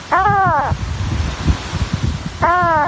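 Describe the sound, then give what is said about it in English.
A tiny kitten, hanging by its neck with its head stuck up through a hole, cries out in fear with two high, plaintive meows, one at the start and another after a short pause, over a steady background of windy noise and low rumbling. “Hanging from his neck, crying out in fear, was a tiny kitten, clinging to life.”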